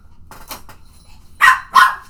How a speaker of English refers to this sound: that was a really loud dog. I thought that was a human.